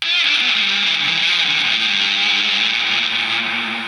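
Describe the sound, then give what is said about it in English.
A sustained, washed-out electric guitar drenched in delay and reverb, with smeared notes blending into a loud, dense shimmering wall of sound that holds steady throughout, with no talking. “So that's me speaking, and then I've got like some samples and stuff of me playing. I've got a ton of delay and reverb, it's sick.”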